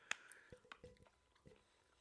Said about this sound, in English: Okay, now I guess we just chew on these. I don't know. You supposed to, like, suck on it?